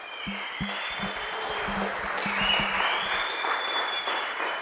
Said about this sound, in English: Please, can I hear a louder shout of amen? May we please give the Lord a louder clap of celebration.